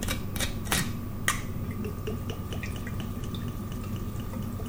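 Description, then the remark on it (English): Gin trickles and splashes steadily into a glass jar of sloes, after a few sharp clinks at the start, with a low steady hum in the background and no talking. “So let's undo the gin and pour it in.”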